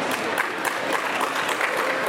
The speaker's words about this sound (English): So moving on to maybe the most famous or infamous of the classic Star Wars television, the Star Wars Holiday Special. So show it, a round of applause.